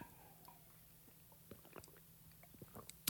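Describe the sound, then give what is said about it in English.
Someone drinking water into the microphone: soft wet mouth clicks and gulping swallows scattered over a low steady hum, ending in a sharper burst. No one speaks. “It's really rude to just drink on the mic like that”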